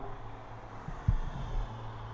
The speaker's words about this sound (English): oh, there's loads of traffic going on outside. Oh, do you hear that?